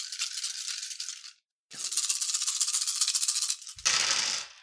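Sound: dice rattling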